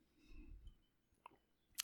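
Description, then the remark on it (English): A quiet sip of a caffeinated drink: soft rumbling handling noise, then two small, sharp clicks, like lips parting or a cup being set down. No talking. “Had to get a sip of the magic juice.”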